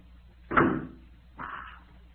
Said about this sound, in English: Wait till I close this door.